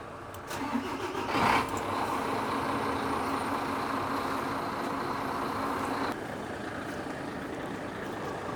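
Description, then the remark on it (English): A large truck engine in New Zealand cranks and catches with a brief surge, then settles into a steady, rumbling idle that continues to the end, dropping slightly in level partway through. The engine is started, with lights and hazard warning beacons on, before a walk-around check of the truck. “Once I've checked the labels, I like to start the engine, turn on the lights and hazard warning beacons, and then do my walk around.”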